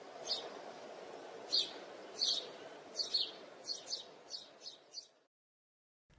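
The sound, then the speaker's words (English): Birds chirp in a quick series of bright, repeated calls, about a dozen short bursts over a steady low background hum, before cutting to silence. “Who invited these damn birds? They literally won't shut the fuck up.”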